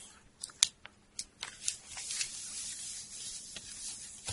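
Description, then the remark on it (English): A deck of playing cards being reshuffled during a tabletop game: a few crisp papery snaps at first, then a steady soft riffling rustle that runs to the end. No one speaks. “Yes, now we reshuffle.”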